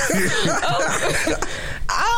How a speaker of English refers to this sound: Hey, y'all keep coughing up in here. We putting y'all out. Look, I ain't got corona. I already got my COVID test.